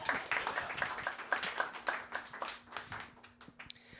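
A short burst of audience applause: many overlapping hand claps in a dense, rapid patter that holds steady, then thins out and fades over the last second.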